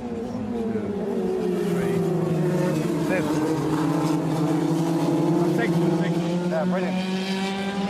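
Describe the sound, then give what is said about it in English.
Racing cars roar steadily during an F2000 championship race, engine drones sliding slowly in pitch with brief higher whines layered on top, loud and continuous with no voices. “With the race underway, Michael watches on.”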